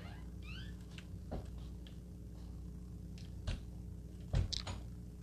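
A cat purrs steadily and close by, a continuous low rumbling drone, with a few soft clicks and small knocks scattered over it and no talking.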